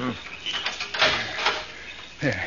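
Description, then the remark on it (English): A key scrapes and clicks in a padlock on a cemetery vault door at midnight, with a few sharp metallic rattles and a louder snap near the middle. Brief voices murmur at the start and end. “I have the key right here. I'll have the padlock off in a minute.”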